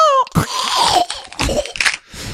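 A brief high squawk from a bird that drops in pitch, then a run of loud, gritty crunches and crackles as the bird's head is crushed, uneven in rhythm, lasting about two seconds with no talking.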